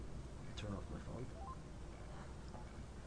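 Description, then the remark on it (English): A few short electronic beeps, rising in pitch, as a cell phone is turned off, sound faintly through a noisy, muffled background where a voice murmurs indistinctly. “I'd be turning off a cell phone.”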